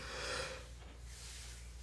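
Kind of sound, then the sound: human body sound, yawn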